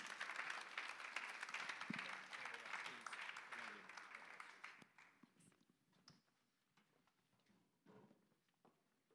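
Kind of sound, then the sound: crowd, audience applauding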